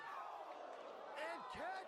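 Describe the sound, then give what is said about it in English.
Two heavy chair shots crash through a wrestling arena during a no holds barred match, the second a deep, booming slam, while a loud crowd shouts and cheers continuously around them. “We got some brutal chair shots here from Cactus Jack and Sandman.”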